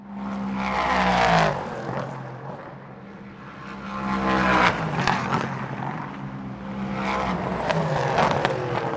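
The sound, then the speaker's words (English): The production-based 5.6-liter Nissan V8 engine of an LMP3 race car, based on an engine found in Infiniti SUVs, revs hard and loud on track, rising and dropping in pitch through gear changes and downshifts, continuous, with no voices. “This engine is based on the production engine found in many Infiniti SUVs and sounds absolutely glorious on track.”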